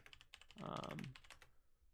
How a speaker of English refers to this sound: What was that? I heard you typing.